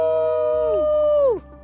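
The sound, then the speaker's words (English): A voice imitates a dragon's roar: one loud, drawn-out, howl-like cry, held steady for over a second before its pitch sinks and cuts off. No other talking. “He roars. I jump.”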